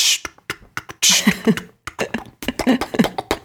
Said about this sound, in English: Oh, tickly coughs come through.